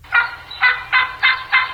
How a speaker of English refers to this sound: That's a yelping hen. That would be incorrect, what? Sir. Wait, what? Was that not a hen? Yeah, a turkey? Is a Jake the same as a hen? That's a Jake's a male turkey. That would be a male turkey. Yelping? Yep.